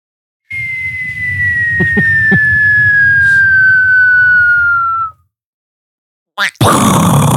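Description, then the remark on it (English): A person vocally imitates a falling-bomb whistle: a steady, high tone slides slowly downward for about four and a half seconds over a rough, low rumble, then a pause and a sudden noisy burst. “I don't know what you guys used to do, but I used to always do like the whistle fall sound effect.”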